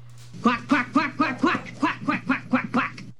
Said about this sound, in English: Quack.